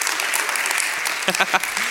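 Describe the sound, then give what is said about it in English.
A church audience claps steadily to applaud Pastor Mark's preaching from the previous week, a dense wash of many hands filling the whole stretch, with a few voices calling out briefly near the end. “We wanted to applaud his ability to preach last week.”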